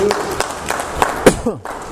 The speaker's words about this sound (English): Give him a hand clap. Amen. Amen.